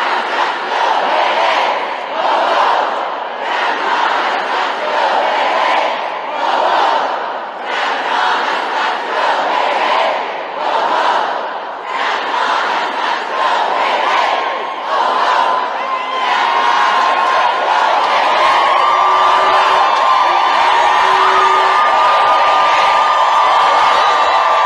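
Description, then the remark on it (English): Hundreds of protesters scream and chant together as they take over a Senate office building, a dense, loud, continuous roar of voices with rhythmic surges, turning into sustained high-pitched yelling toward the end. “In the background, you'll hear them screaming as they take over.”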